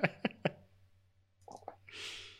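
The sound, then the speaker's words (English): Dice clatter onto a hard surface in a few sharp knocks, followed by a quicker cluster of smaller rattles as they settle, then a soft rushing noise. “I don't have a camera for my dice yet, but it's you okay. Can hear it.”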